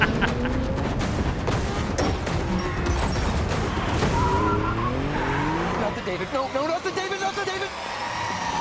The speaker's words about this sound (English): this trailer is really all just a car chase.